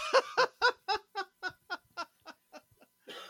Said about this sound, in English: are you laughing or are you just coughing? Mostly coughing. Okay. You're coughing, laughing, aren't you? You've got the coughing, laughing hybrid going on right there. You all right, buddy?